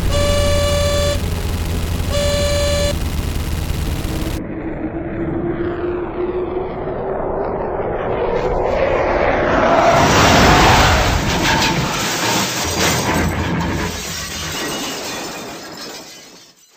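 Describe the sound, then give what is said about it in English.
A fighter plane's engine whines louder and rises in pitch as it dives, ending in a loud crash of shattering metal and glass with lingering debris noise. “You've sustained injuries from your plane crash”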